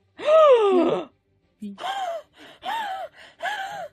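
Two voices gasp loudly together, a long drawn-out intake followed by several shorter, rising gasps in quick succession, clear with no speech, reacting to a contract reward of 700 gold pieces and 60 platinum pieces in a tabletop role-playing game.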